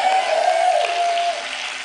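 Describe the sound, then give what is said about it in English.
An audience claps steadily in a dense, continuous wash of hand claps that holds at a fairly even loudness for about two seconds, with no talking over it. “All right, except for those people who weren't clapping.”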